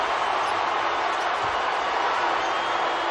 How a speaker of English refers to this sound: crowd in the background chanting Luke.